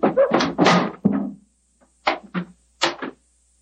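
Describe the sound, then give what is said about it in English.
Knocking on the door of an elephant house to get the keeper to open it: a quick cluster of solid thuds, then a pause and a few more spaced knocks, fairly loud, with no talking. “Why in thunder doesn't the keeper open the door? I imagine because his mind is preoccupied with music. Knock again, old fellow, will you?”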